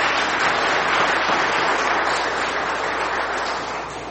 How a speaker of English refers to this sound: Let's give him another round of applause for doing such a fantastic job.